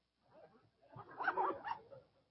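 A dog gives a short run of high, yelping barks that blend into one another, fairly faint and heard alone without any talking.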